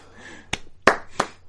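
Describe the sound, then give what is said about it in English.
Four sharp hand claps in a slow, steady rhythm, given as a clap for Ryan Condal, each a crisp, bright smack standing out clearly against a quiet background, with no one talking. “Ryan Condal gets a clap for that one.”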